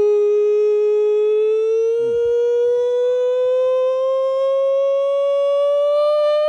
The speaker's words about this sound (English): that is the nonsense siren, which means it is your time to shine. Sounded a bit different there.